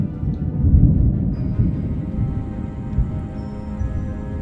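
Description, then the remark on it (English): A deep, continuous rumble of thunder rolls steadily through a ferocious thunderstorm over a circle of standing stones on a hill, heavy in the low end with a faint hiss above, and no voices. “With a ferocious thunderstorm raging in the skies.”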